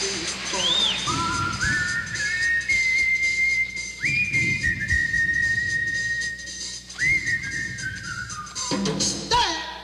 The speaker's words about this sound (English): And he smiled. And whistled his sweet, charming little song.